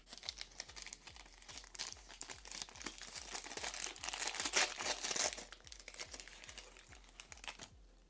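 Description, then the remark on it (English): Crinkling of the paper wrapper of a freeze-dried ice cream as it is opened, a steady run of crisp rustles and crackles lasting several seconds, with no voices. “All right, so it comes in its little paper here.”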